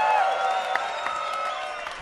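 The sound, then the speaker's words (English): A large crowd cheers and applauds steadily in a frenzy after a dominating performance, a dense roar of voices with scattered claps and a few whistles rising above it, loud and continuous throughout. “Look, you got this whole crowd in a frenzy, so thank you for being part of it.”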